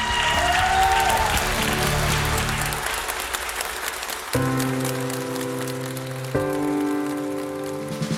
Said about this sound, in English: I think he deserves one hell of a round of applause.